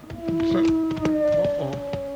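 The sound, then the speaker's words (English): A wolf howls in a long, sustained, slightly wavering tone with a second higher pitch layered over it, fairly loud, seemingly from just over a hill, accompanied by a scattering of sharp knocking or clattering sounds. “let's go find that wolf.”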